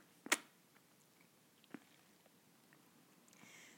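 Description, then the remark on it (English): A quiet sip of water with a sharp wet mouth click at the start, then a softer swallow and faint mouth noises against near silence, with no talking. “Just going to take a sip of water.”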